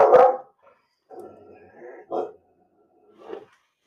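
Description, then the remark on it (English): A female dog lets out a sharp bark, then a low rumbling growl, followed by another bark and a softer growl or whine, with no one talking. “Now she's growling.”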